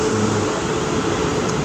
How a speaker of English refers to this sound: Sorry, the train coming through. Not for me. Seems to be running fast trains into London okay.